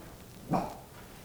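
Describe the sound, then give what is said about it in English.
A single sharp, piercing bark from a dog rings out once, brief, standing alone against a quiet background with no talking. “Just an ear piercing bark.”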